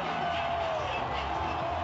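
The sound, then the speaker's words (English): A stadium crowd in Norman cheers and jumps up and down in the stands as Oklahoma leads 42-7, a loud, steady roar, a dense wash of many voices that holds unbroken for the full two seconds with no single speaker standing out. “Crowd is going nuts.”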